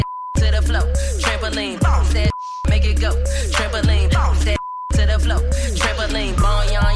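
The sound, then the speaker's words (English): A steady, high censor beep cuts into a loud, bass-heavy dance track three times, bleeping out a swear word, each brief bleep briefly replacing the music before the song resumes. “What are you beeping out? The S word.”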